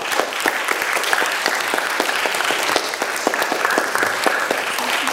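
A crowd applauds steadily at a panel discussion, many hands clapping in a dense, sustained patter that holds at an even, fairly loud level throughout, with a few sharper individual claps standing out.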